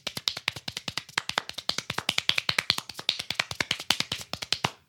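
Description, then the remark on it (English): Rapid hand clapping, given as a demonstration of fast clapping skills, in a fast, steady flurry of sharp, crisp claps, several per second for about five seconds, fairly soft, with no talking. “You want to give us a demonstration, an audio demonstration of your clapping skills?”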